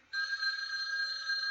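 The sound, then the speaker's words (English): A telephone rings with a steady, bright electronic trill that starts abruptly and sustains at an even level, fairly close and clear, with no voices. “Answer the phone, bullhorn mouth.”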